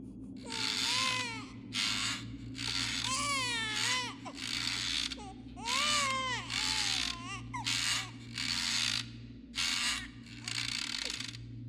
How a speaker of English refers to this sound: After a few seconds, we would then hear what sounded like a rocking chair.